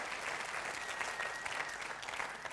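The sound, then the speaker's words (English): An audience claps steadily for three men in a dense, continuous round of applause, many hands overlapping into a bright, even wash of sound with no voices standing out. “Let's give these three guys a big round of applause for saying that.”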